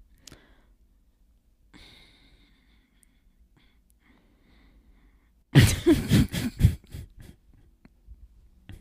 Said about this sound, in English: Sorry, I'm not on my A game. I'm on my yawn game.